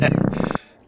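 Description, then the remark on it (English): A single short, loud belch, a throaty rumbling burst lasting about half a second before cutting off into near silence, made while tasting beers. “We'll be tasting and discussing these beers today and giving our signature belching sounds.”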